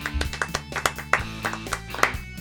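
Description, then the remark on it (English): A short burst of steady hand clapping to close a show, roughly a dozen claps in a quick, even rhythm, moderately loud, with a low sustained tone humming underneath. “Well, let's clap it out.”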